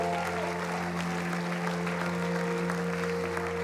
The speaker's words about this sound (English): Where's the guy that got his back healed last night? Come, quickly. Give him a hand clap as he comes up.